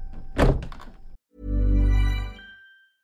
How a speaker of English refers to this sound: Can you close the closet door?